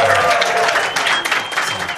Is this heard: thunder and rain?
no